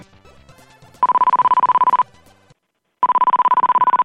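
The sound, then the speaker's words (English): Two one-second bursts of a rapidly pulsing, high electronic telephone ring, separated by a second of silence, with some faint jumbled sound before the first burst. “What's those weird rings you're getting?”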